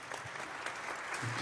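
A studio audience at a remote, mobile recording location claps steadily, a dense wash of many hands hitting together at an even loudness for the whole stretch, with a faint murmur of voices underneath.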